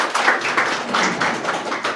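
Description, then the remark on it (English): A crowd applauds for a birthday in a dense, steady patter of many overlapping claps, sustained at an even loudness for about two seconds with no voices. “Can we just clap or wave?”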